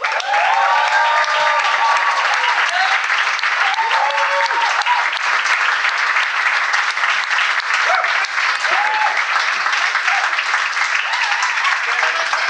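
A crowd applauds loudly and steadily for about twelve seconds as three guests are brought on stage, a dense wash of clapping with scattered voices and whoops rising above it.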